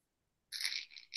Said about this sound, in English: Yeah, and I Oh, actually have that LP, so I can even drop the needle on that one. get it crunchy.